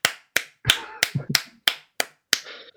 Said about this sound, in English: In case you can't hear me, that's me clapping for you telling a 20-year-old joke.